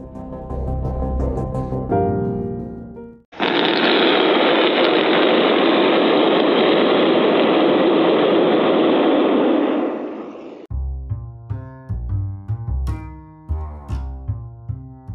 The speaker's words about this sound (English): That was the sound of yesterday's successful test firing of the SpaceX Booster 7 at the Boca Chica SpaceX facility, well, near me here in South Texas.